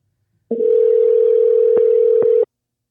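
A loud, steady telephone dial tone hums for about two seconds, broken by a couple of faint clicks near the end, then cuts off abruptly. No one speaks.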